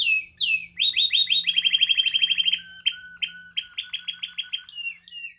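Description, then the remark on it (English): Canaries sing loudly in bright, rapid trills and rolling chirps, with quick repeated notes that speed into buzzing runs before breaking into separate bursts, as the birds are judged at a bird show. No one speaks. “And if your bird's too loud, well, please. You just need to breed some quieter birds.”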